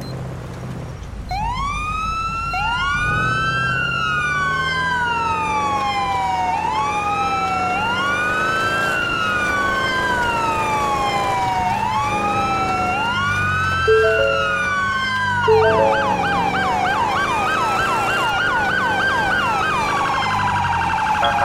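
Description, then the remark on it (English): A police car siren wails loudly, rising and falling in long sweeps before switching to a rapid yelp near the end, with steady road rumble underneath and no talking, as the car responds code 3 to a traffic accident. “Delta 1, show me on route code 3 to traffic accident, unknown details.”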